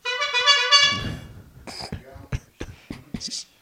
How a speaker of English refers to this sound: Give him another honk.